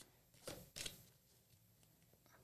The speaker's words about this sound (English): Nina's a regular blackjack dealer. Shuffling the shit out these cards.